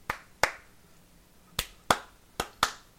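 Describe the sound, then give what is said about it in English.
Seven sharp hand claps in an uneven rhythm, mostly in quick pairs with short pauses between, each a crisp, bright crack that fades fast, with no talking over them. “So clap.”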